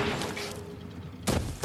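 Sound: shotgun blast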